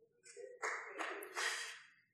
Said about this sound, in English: And praise the Lord that we get a few claps, because people don't like to clap when we talk about Christ and judgment.